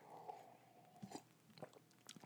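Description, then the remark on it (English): Someone takes a sip of a drink: a few soft, wet mouth clicks and a quiet swallow against a faint background hum, with no talking. “I've got a drink here and all of my notes. Let me take a sip.”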